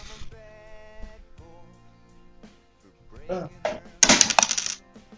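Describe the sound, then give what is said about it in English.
Dice, including a big D6 rolled for damage, clatter and roll across a hard tabletop in a quick burst of sharp, bright clicks, loudest near the end, with a voice talking quietly underneath. “One, two, three, four, yeah, four. You take D6 damage.”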